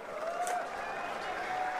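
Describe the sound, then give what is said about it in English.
An audience applauding as Australian captain Pat Cummins is called up for a chat, in a steady, dense wash of claps that holds even for about two seconds, with faint thin whistle-like tones running through it and no clear speech on top. “Thank you very much for that round of applause.”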